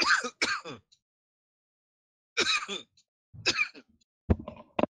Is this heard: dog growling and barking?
no